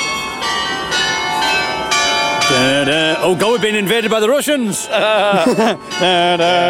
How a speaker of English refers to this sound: Well, the bells that... my God, we're in time for the Leicester Square bells. The campanologists... I was going to take you towards the bells. The bells have stopped. And the bells have stopped. The last... Oh, no, it's starting again.